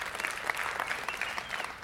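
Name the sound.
polite audience applause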